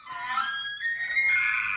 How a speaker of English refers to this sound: And the elks are screaming, baby. Sounds like me when I can't find breakfast.